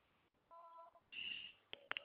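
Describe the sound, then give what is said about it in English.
A phone rings with an incoming call: a brief electronic tone, then a higher, brighter trill, ending with a few sharp beeps or clicks. Moderately loud, with no talking. “Oh, wait, hold on, I'm getting a phone call.”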